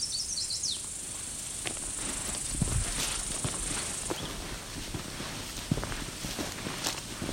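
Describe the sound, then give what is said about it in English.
Footsteps crunch along outdoors at an uneven walking pace as someone walks back through flats with a few trees, soft thuds and scuffs over a constant high insect whine that fades partway through, with a few quick bird chirps at the start. “Walk back.”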